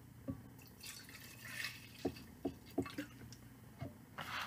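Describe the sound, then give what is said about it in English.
A tequila drink poured into a tin cup, heard as a series of sharp liquid splashes and drips with brief hissy gurgles between them; no one speaks. “And got my tin cup. She has her tin cup. I will pour for you.”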